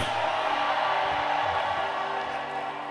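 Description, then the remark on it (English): A large crowd screams and cheers together in a loud, steady roar without a break for the full few seconds, dense with many overlapping voices. “Come on, scream.”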